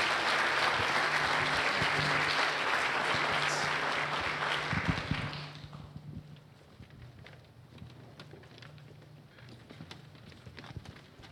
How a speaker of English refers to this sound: I'd like the body here to give them a round of applause and show them your love. Thank you.